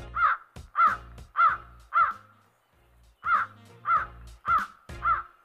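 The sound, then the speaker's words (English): A crow caws repeatedly, eight harsh calls in two evenly spaced bursts of four separated by a short pause, loud with no voices present. “If you think crows are mysterious, intelligent, amazing, or scary, well, you've stumbled onto the right podcast.”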